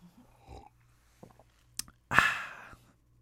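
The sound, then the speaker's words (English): A few faint mouth clicks and lip noises, then a loud slurp lasting about half a second as someone takes a sip of coffee, followed by quiet. “And don't think I made a fake sound. I actually took a sip.”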